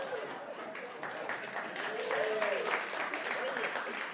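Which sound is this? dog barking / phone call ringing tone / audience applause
audience applause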